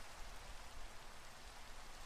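Steady rain falling, a dense, even hiss spread across the whole range with no pauses or individual drops standing out. No voices or other sounds break through the constant wash.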